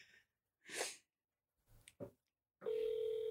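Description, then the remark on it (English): A sharp, breathy burst and a few soft clicks, then a loud, steady electronic ringback tone starts and holds unbroken to the end: a phone on speaker ringing on an outgoing call to the Rock River Golf Club in Iowa. “Okay, four to five rings done.”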